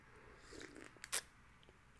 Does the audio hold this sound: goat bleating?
no